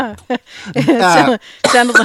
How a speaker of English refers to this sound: Excuse me, what was it? Had to cough there.